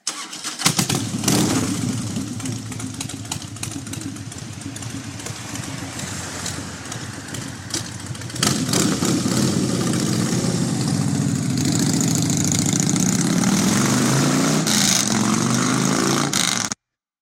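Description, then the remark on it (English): Motorcycle engines crank to life and settle into a loud, steady idle, with a deeper, stronger rumble joining about halfway through as the bikes rev and run together, without any talking. “Maybe the sound of some motorcycles will help.”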